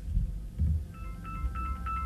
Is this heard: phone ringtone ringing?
yes